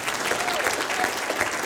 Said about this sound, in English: You guys just want to stand? I want to give these guys a round of applause as well.